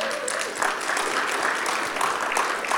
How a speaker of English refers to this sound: Let's just give her another clap.